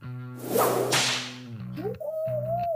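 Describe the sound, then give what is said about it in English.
A whip crack sound effect for a Mind Whip spell cast during a tabletop role-playing game: a loud, sharp swishing burst cracks over a low humming drone, then fades into a wavering, whistle-like tone. No one speaks. “And I am going to cast Mind Whip on Guinevere.”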